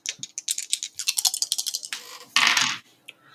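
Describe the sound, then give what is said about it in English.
Three dice clatter in quick, uneven clicks, as if shaken in a hand or cup, then a brief louder rattling tumble across a hard surface before stopping, rolled in a tabletop game and landing on 10, 9 and 2. Fairly quiet, with no voices. “Okay, so 3 dice.”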